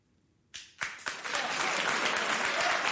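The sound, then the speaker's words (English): Applause from a studio audience breaks out suddenly after near silence, a few sharp claps leading into a dense, sustained wash of clapping that stays loud and steady. “Where did we get this crowd?”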